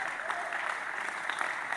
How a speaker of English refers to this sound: Can I get a clap in the house now?